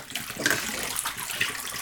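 Steady clear water running and splashing out of a tank after washing, a continuous hiss of flowing liquid with small gurgles and no voices.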